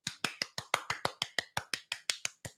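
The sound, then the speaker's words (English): A manual clap on a call-in talk show: a steady run of about fourteen sharp hand claps at an even, brisk pace, each a crisp, bright smack of similar loudness, with no voices. “I need to do a manual clap,”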